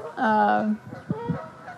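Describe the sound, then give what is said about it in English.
Geese honking: one loud, drawn-out nasal honk followed by a few shorter, choppier calls in quick succession. “The geese are really, there's a lot going on today.”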